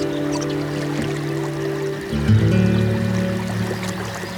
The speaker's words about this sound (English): All I can hear is a bird song, a lap of water as I paddle through this still river.